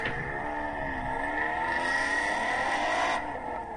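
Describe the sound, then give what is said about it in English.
An ATS-V car engine revs through a full 3-inch exhaust by Weapon X Motorsports, with a loud, throaty exhaust drone holding a sustained, slightly rising pitch for several seconds before easing off, with no talking. “All right, this is a ATS-V full 3-inch exhaust by Weapon X Motorsports.”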